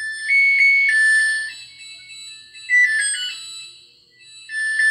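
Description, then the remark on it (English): A short electronic jingle alert plays on its own, a bright, high-pitched melody of quick stepping tones that rises and falls for a few seconds, fairly loud; the alert signals that Totino's pizza rolls are done. “It's another little jingle.”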